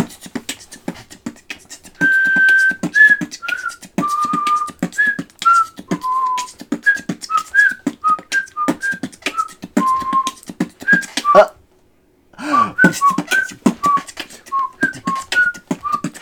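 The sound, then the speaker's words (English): Someone whistles a loose, improvised freestyle melody of short bright notes over a steady, rhythmic tapping beat made by another person, fairly loud, with a brief silent pause near the end. “Okay, freestyle. Freestyle whistle, right?”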